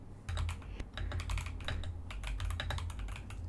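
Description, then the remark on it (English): Rapid, steady typing on an RGB computer keyboard, with crisp key clicks tumbling over a soft low hum and no voices. “ASMR keyboard typing (with whispers) for sleep, relaxation and studying”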